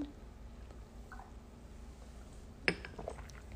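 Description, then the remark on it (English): A single bright clink of very full drinking glasses touching in a toast, with a short ringing tail, against a low, quiet hum; a few faint knocks follow. “I poured more in mine than yours this time.”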